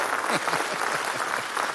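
Steady audience applause for the people who first took live shots of a historic event, a dense, even patter of many hands clapping at a loud, constant level with faint crowd murmur mixed in.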